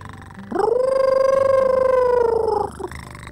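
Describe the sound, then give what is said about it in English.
A single long, howl-like cat yowl, loud, holds a steady pitch for about two seconds before breaking off, with only a faint low purring rumble before it. “It purrs, and then it howls like a wolf, but it sounds different.”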